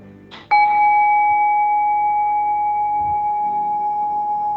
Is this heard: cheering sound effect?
no